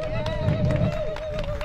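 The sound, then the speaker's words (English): A short burst of scattered audience applause for community representatives at an event, a handful of irregular claps over a low crowd murmur, with a steady high-pitched electronic hum running underneath throughout. “They're representing the community, so we want to make sure we give them a round of applause.”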